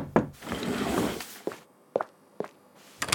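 Several separate knocks on a wooden door, evenly spaced, following a brief stretch of rustling noise; no one speaks.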